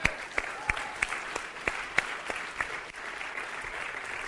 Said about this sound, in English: But now it's this week, right? So I just want to give him a round of applause. He hates this.